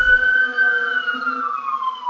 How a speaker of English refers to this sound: The siren.